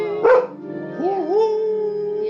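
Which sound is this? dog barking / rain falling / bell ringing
dog barking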